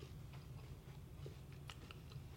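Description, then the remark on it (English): Chewing of a crunchy cheese snack, with a handful of sharp, irregular crunches over a low, steady rumble. No one speaks. “They're very crunchy.”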